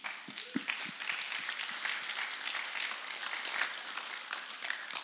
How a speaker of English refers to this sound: You guys should give yourself a round of applause.